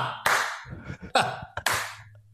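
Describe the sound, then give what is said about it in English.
Thin, scattered applause recorded on a camera and played back through a VCR: three loud claps with ringing tails and a few faint, irregular ones between them, all over a steady low electrical hum with a tinny, lo-fi quality. “And I remember going home and plugging my camera into my VCR and watching it.”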